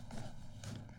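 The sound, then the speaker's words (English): A dog shifts and stomps around inside a cage, giving off a couple of soft, muffled clattering bursts, like paws on a wire floor, heard faintly with no talking. “Plus, you can hear him in the background, dude.”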